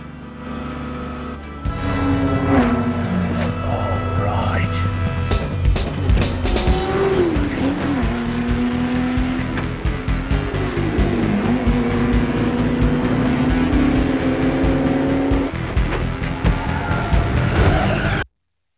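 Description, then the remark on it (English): Roaring race car engines rev and scream at high pitch while tires squeal and skid in long wavering tones, loud and continuous for most of the stretch, with no talking. “Now that's a way to race.”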